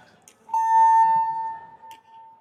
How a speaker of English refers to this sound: I think there's a fire alarm going off right now, so I don't know how much time I have. You can see there's a ring of blinking lights around me right now.